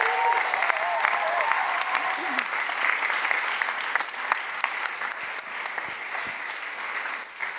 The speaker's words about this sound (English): Yay. Big round of applause.